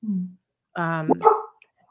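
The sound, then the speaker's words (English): A puppy yaps: a short low whine, then a brief pause and a bright, high burst of two or three quick yips, with no talking. “Because, oh, puppy.”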